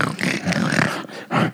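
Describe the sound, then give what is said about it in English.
A woman in a judged pig-calling contest lets out a loud, harsh, guttural pig call, a raspy roaring voice sustained for about a second before a brief dip and a second strong burst. “That she's like, that wasn't a pig call.”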